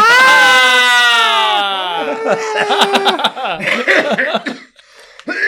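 A loud, sustained scream that slides downward in pitch, followed by a burst of rough, choppy coughing sounds mixed with breathy chuckles, close to the microphone.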